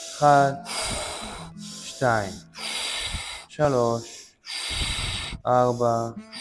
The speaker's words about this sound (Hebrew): 1, 2, 3, 4, 5, נשימה אחרונה ולהוציא.